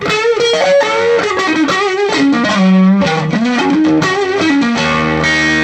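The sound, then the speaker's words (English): An electric guitar through an overdrive pedal plays a loud, gritty melodic phrase of sliding, sustained notes that rise and fall, with a thick distorted tone and no talking. “I don't know how he does it, but it captures that sound that comes from that circuit and from that speaker combination.”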